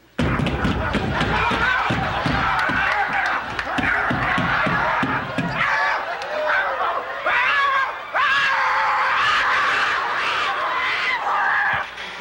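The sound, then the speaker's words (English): Heavy, rapid pounding on a reinforced door for several seconds while a voice shrieks and screams continuously; the banging stops and the loud, frantic screaming carries on alone. Presented as Hillary Clinton locked in her room under house arrest. “In fact, I've got her locked up in her room, take a look.”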